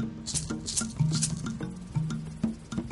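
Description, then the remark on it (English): Liquid poured out from a tin cup as a libation for those who came before, falling in an uneven, pattering splash of drips and trickles that rise and fade over a few seconds, with a low, steady humming tone underneath. “Before I enter, I must pour out libations for those who came before me.”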